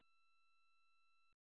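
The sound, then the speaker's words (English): A steady, fairly loud electronic beep tone as a caller's phone line cuts out during a call, holds for just over a second and then cuts off abruptly with a small click, followed by silence. “Your phone cut out. We can't hear you.”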